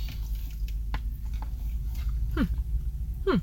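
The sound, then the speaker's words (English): Soft chewing of mushy breakfast food at an IHOP restaurant in Harrisburg, with quiet wet squishes and small mouth clicks repeating irregularly over a low background hum, and almost no crunch. “I feel like this is a good podcasting food as well. It's quiet, it's soft. There's not a lot of crunch.”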